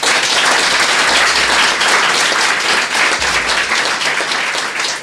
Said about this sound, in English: Excellent. Please join me in giving Scott a round of applause.